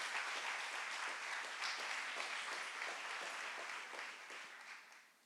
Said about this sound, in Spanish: Diga aleluya, dale un aplauso a Jesús.